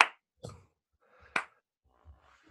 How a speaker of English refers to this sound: You are getting the slow clap from me. That was a deep dive worthy of my respect.